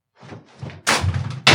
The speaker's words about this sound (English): Okay. We just knocked a whole camera over.